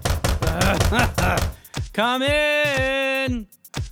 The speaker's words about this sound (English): Yes, I need to oil the door hinges because the door is ridiculously creepy.